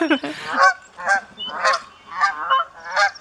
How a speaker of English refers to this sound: And yes, essentially looks exactly like a Canadian goose. And as far as I can tell, sounds the same too. I like looked up its calls because I thought it would be entertaining. Not really. Just like a high-pitched Canada goose. So disappointing there.